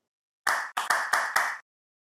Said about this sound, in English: I hear some claps. I hear some claps out there. Yeah. They got the claps. There we go.